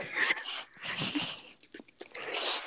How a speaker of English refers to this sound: Slurped. Here. Slurped air.